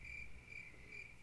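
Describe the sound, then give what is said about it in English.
Crickets chirp steadily in a high, pulsing trill, with three clear bursts over a faint low rumble, like a quiet night ambience inserted as a gag pause. “I was going to put Crickets. I'm going to put Crickets after that.”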